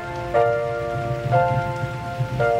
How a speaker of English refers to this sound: You gotta hit that G, I'm glad it's raining. Gee, I'm glad it's raining.